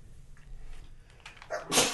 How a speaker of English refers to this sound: Watching Greg put that up his nose made me sneeze.